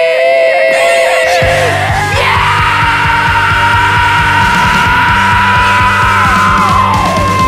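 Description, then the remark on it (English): A person lets out a long, loud, strained roar in imitation of a dinosaur, jumping higher in pitch after a couple of seconds and holding the growling cry for several more. “That's my fucking dinosaur voice.”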